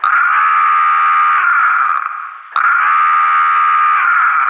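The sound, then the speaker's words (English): A loud, steady electronic alarm blares, its shrill tone holding for about two seconds, sagging briefly, then snapping back on at full strength and continuing without any voices. “Now the alarm sounded, and we don't even have the diamond.”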